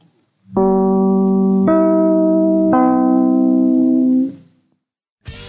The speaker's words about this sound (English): Three chimes mean good times on NBC.